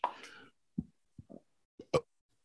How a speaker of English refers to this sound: Oh yeah. Did I just burp? Now I gotta cut that out now. it wasn't disgusting. Don't worry, you're fine.